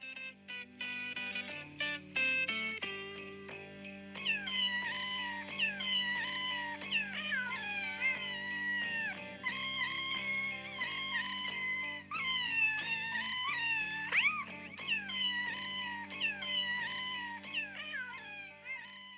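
Pitched cat meows edited into a bouncy Christmas song medley released on a 1993 album, loud and continuous over a steady musical backing, with the meows rising and falling like sung notes. No one talks.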